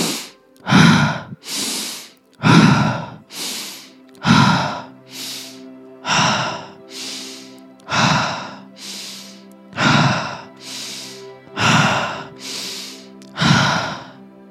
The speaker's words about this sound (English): Keep going. Keep the breathing circulating. Keep it going. That's it. That's it. Keep breathing.